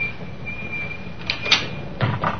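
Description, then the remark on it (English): The handle of a locked door is tried and rattled against the lock, a few short metallic clunks and jiggles over a faint steady hum, with no one speaking. “Is the door locked? Yes, but look down there.”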